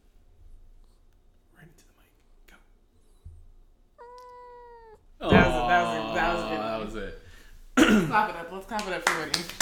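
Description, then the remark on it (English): A male cat named Winnie meows: first a short, soft, steady-pitched mew, then louder, drawn-out wavering meows, after a few seconds of near-quiet with faint scratchy rustles. “Did you hear him? One more time. Go. Go, Winnie.”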